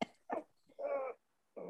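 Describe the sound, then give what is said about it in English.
A dog whimpers in a few short, high, nasal bursts, one drawn out longer than the rest, with brief quiet gaps between them and no one talking. “Poor thing. We're so mean about giving these dogs.”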